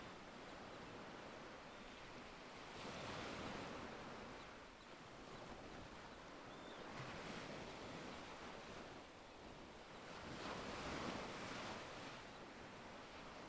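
Waves break on a black sand beach in a steady rhythm, each surge swelling and washing back every few seconds over a constant hiss of surf and light wind, with no voices.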